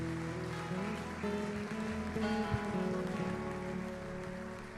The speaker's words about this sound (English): Come on and give the Lord one more hand clap of praise.